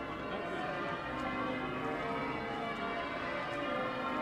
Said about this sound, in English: It's a bright blue-skied morning in early April, the eve of the Easter weekend. The church bells of York Minster are ringing out as the crowds gather around the cathedral.